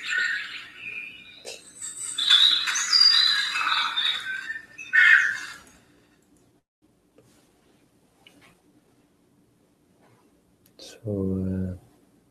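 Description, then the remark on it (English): An alarm goes off with bright, warbling, chirpy electronic tones for about five seconds, then cuts to near silence before a short burst of a voice speaking. “Got caught up in there goes my alarm.”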